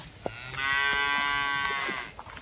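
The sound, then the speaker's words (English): A single loud, drawn-out cow moo lasting well over a second, rich and harmonic, on a family farm with faint outdoor background noise and no talking. “Or playing fetch with the dogs and saying hi to my uncle's cows. Hey, little calf.”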